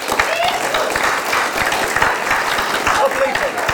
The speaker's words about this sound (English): And I think, I know it'll be a round of, well, I hope it'll be a round of applause, but let's give each other a round of applause before the next speaker. So well done, everyone, and we'll chat later on, all right?